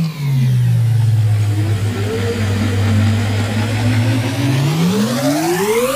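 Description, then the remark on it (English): A loud engine drones at a steady low pitch, then revs up with a rising whine over the last seconds. A newly bought Hustle Share Time Machine sound effect with no voices. “And I need you to buckle up because we're going to ride the Hustle Share Time Machine.”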